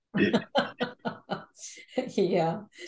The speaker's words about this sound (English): Here I am wanting to share God's information, and now I'm having trouble coughing.